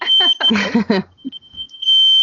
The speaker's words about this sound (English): Ooh. Fire alarm. Oh, okay. No fires. Are we good? We're good. Yeah, we're good. All right.